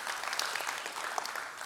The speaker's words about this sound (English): Let's give it a hand clap. That's a great work.